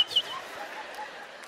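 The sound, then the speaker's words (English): A person's voice mimics a rooster's crow in one drawn-out, sustained call at moderate volume, heard alone without other talk. “No, birds, it's still dark. Cock-a-doodle-doo.”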